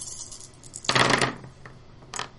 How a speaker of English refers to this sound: Go ahead and roll all of your dice.